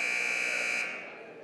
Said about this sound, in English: Clock winding down, 15 seconds to go until the teams come out of their final huddle for the start of the third. The clock at 3, 2, 1, and there's the buzzer.